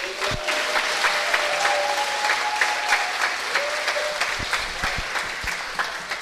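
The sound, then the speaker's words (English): An audience applauds steadily to welcome the morning's speaker, a dense patter of many hands clapping at a fairly loud, even level, with a few sharper individual claps standing out near the end. “Pause for applause.”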